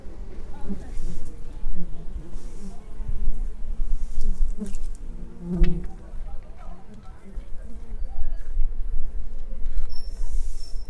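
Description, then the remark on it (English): A dense, continuous drone of many honeybees buzzing around their hives at an apiary in the sun as bees enter and exit the hives, some carrying goldenrod-yellow pollen, holding steady throughout with individual bees swelling and fading as they pass. “I notice the bees entering and exiting their hives, some with some pollen, like a goldenrod yellow pollen, caring for their hive, caring for each other.”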